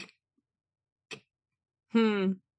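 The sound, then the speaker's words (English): A voice imitates a clock ticking in a quiet doctor's waiting room: two crisp clicks about a second apart, followed by a short, drawn-out voiced tone, with silence between the sounds. “I won't say what kind of doctor I was visiting, but it was quiet, and there was a clock, and it was going.”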